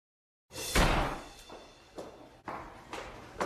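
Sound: door being slammed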